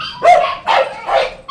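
Several dogs bark loudly in quick succession, sharp repeated barks overlapping in an echoey space, with a bright yip cutting in at the end, in the main dog kennel adoption area of an animal shelter.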